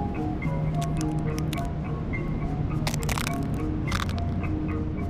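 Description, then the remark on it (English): Dry, brittle crunching as dried-up crab shells are stomped on and break underfoot, in several clustered bursts, fairly loud, with pauses between steps over a low steady background hum. “I stomp on dried up crab shells because I like this satisfying sound they make and it reminds me a little bit of heartbreak.”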